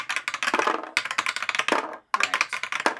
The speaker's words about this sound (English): Let's roll some dice. Do it.